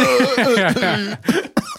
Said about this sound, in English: That was a real cough there at the end.